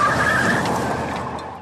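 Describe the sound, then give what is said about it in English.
A car's tires squeal in a loud skid lasting under two seconds as the car turns around, a high screech over rough road noise that fades slightly at the end. No one speaks. “I'm going to turn this car around and there'll be no Cape Canaveral for anybody.”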